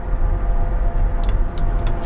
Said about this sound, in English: look, the car slows down when there's people in front of me. It's dope.